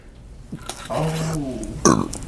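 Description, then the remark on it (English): A man gives a single drawn-out, croaky burp lasting well under a second, followed by a brief sharp noise and faint background murmur. “He burped his shit. Like a baby.”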